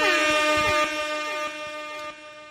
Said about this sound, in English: I'm sounding some air horns for that one, man. That's dope. I like that.